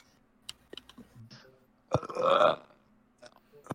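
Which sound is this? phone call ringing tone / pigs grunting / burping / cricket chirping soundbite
burping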